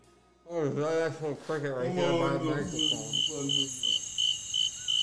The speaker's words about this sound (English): Oh, that's some cricket right there by the microphone.